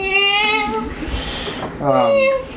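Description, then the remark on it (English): Two long, wavering cat meows heard in the background of a phone call, one after another with a brief noisy pause between them, each with a bright, whiny pitch that bends and falls. Fairly loud, with no talking. “And you hear these cats meowing in the background of the call.”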